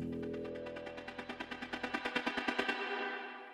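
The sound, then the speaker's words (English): Fireworks crackle and bang in a fast, even burst of about twenty pops over a sustained roar, loud, then cutting off abruptly with a fading echo. “In 2010 in the Philippines, it took just 17 seconds to launch nearly 126,000 rockets.”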